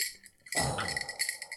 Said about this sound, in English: Oh, she just added the ice to the glass. Oh. Yeah. That's a beautiful, beautiful sight. That is Any listeners that don't know, like, so right now that amazing carved ice that she did with that chainsaw is now in the glass and is melting away.